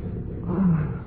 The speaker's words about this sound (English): Oh, started to thunder.